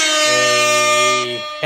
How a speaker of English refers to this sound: Let's put air horn on this bit.